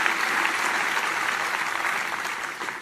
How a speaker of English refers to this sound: Acclamons Jésus. Let us applaud the Lord.